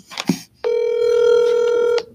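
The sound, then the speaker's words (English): A single steady ringback tone from an outgoing phone call to a friend, lasting over a second, loud and clear, preceded by a brief click or shuffle and followed by silence. “All right, so we're gonna have a phone a friend for our for one of our topics right now. So let's see if he'll answer.”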